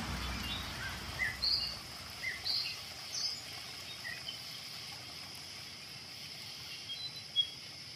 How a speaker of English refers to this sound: Birds. Bees. Bees.